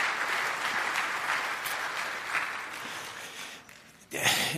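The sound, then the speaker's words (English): A steady wash of audience applause, many hands clapping in a dense, even patter that dips briefly before swelling back up loudly at the end. “Let's give a round of applause for Jacob.”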